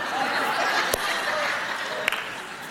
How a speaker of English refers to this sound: Did you hear that clap by my wife right there? Did you hear that?